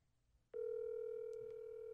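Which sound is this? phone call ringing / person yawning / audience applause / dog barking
phone call ringing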